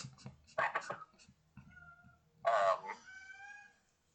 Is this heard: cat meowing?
yes